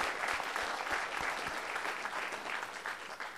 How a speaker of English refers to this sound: I think they need a round of applause.